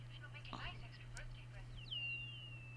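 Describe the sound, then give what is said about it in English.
An eerie bird call: a high, thin tone that swoops down and then holds a long, steady whistle, with a faint second tone alongside. A low steady hum and brief earlier noises sit underneath. “Is the bird making that noise?”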